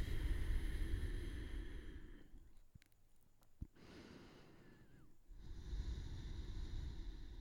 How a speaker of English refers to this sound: Let go, close your eyes. Massive breathing.